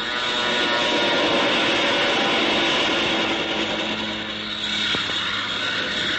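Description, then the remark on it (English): A fighter plane roars loudly as it dives on a strafing run at people on the ground, a dense, steady engine drone filling the whole stretch, easing briefly before surging again, with no voices. “He's making a run on us! Duck, everybody!”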